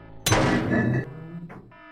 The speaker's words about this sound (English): So I ripped a fire extinguisher off the wall and I propped it under the door.